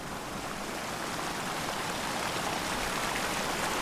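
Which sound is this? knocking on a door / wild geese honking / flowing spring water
flowing spring water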